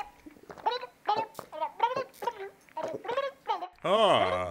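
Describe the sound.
A person voicing Mr. Turkey, a turkey presidential candidate being interviewed, imitates a turkey's gobble with a quick run of warbling, throaty bursts, closing on a longer, louder gobbling call, with no other talk.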